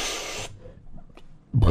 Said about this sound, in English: Second burp of the episode.